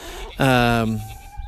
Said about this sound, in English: As I walk over here around the old part of the farm, which is actually the farmstead, we have a chicken tractor that houses four laying hens.